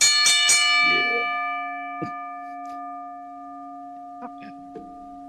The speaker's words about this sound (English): ring the bell.